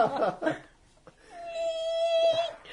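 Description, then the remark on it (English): A brief burst of voices, then a single long, steady, fairly loud squeal, a voice imitating a cat screeching as it slides down a metal pole. “The sound of a cat sliding down a metal pole.”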